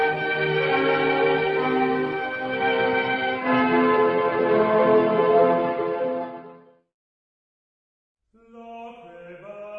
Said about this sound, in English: But a priest who begins to ring joy bells at 11 o'clock at night is quite another matter.